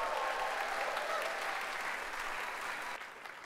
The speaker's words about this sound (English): So would you give a big round of applause for … this morning?